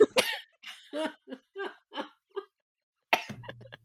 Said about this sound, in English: She's gone into a coughing fit. Drink some tea. Have some tea.